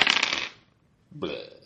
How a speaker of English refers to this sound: Yeah, listeners, oh, he really did throw his dice across the room.